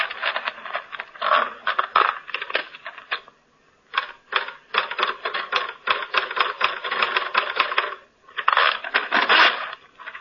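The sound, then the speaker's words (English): Rapid clacking of manual typewriter keys, with dense bursts of strikes broken by a couple of short pauses, loud and steady with no voices. “And there's a typewriter.”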